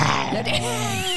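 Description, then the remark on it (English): A person in a studio imitates a roar with their voice: one loud, sustained, raspy growl lasting just over a second, holding a fairly steady low pitch with a harsh, breathy edge. “And you do the best roar.”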